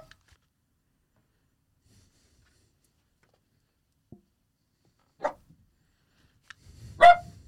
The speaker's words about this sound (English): Shush. Dog is barking.